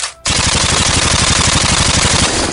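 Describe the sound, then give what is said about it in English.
A loud, rapid burst of Uzi submachine gun fire, dozens of sharp shots in a fast steady rhythm lasting over two seconds, with no voices. “Baker fires a burst from his Uzi.”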